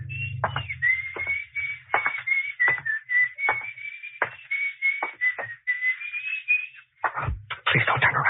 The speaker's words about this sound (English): My mouth was so dry, I wondered for a few seconds how that guy had been able to whistle, you know, the way you do.